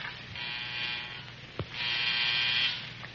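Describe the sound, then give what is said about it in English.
An electric buzzer is sounded twice to signal McInerney, each a steady, raspy, mid-pitched drone lasting about a second, separated by a short pause with a faint click. No one speaks. “I'm going to Buzz McInerney.”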